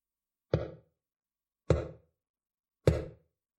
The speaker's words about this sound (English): Tap, tap, tap. He kept doing it. Slowly, with a long fingernail against the glass.